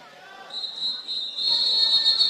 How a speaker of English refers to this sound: Now we got a whistle as the Model Towners got the ball in.